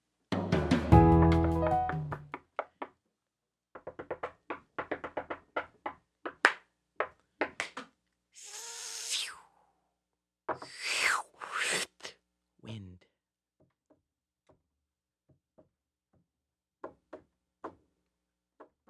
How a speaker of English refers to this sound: Okay, that was a horse. That was a horse. That was great. So moving. I was actually going for sheep.